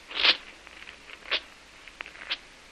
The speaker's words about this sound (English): I can't trust you. So I tear up the paper and burn it. See?